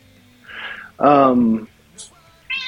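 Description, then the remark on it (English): A cat named Booger meows once, fairly loud, a drawn-out cry that slides downward in pitch, with a few softer scattered sounds around it. “Your cat's name is Booger?”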